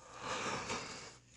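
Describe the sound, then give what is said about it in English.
A person lets out a drawn-out, breathy yawn, fairly loud, rising and fading over about a second with no talking. “Sorry for yawning in your ear.”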